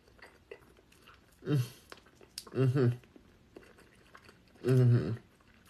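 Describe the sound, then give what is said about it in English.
Someone chewing a Field Roast vegan hot dog, eaten with vegan mac and cheese, with soft wet mouth sounds and three short, loud hummed 'mm' sounds of enjoyment spaced a second or two apart. “So we're gonna eat this with some mac and cheese, vegan mac and cheese, made with the macaroni noodles and breadcrumbs and vegan cheese from Via Life.”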